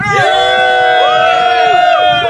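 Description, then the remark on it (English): A live audience in Houston, Texas, cheers loudly, with sustained whoops and shouts from many voices overlapping in a continuous roar for a couple of seconds. “This is Houston, Texas, and great crowd.”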